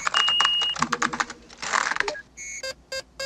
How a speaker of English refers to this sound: is this the one where he says, like, my mom was a showgirl in Vegas, didn't have a lot of friends, so I just crushed away on the keyboard, solo mission.